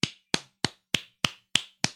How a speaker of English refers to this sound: I give all of y'all a round of applause.